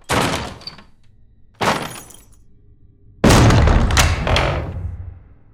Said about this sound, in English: Anyway. Yeah, let's bust down that door.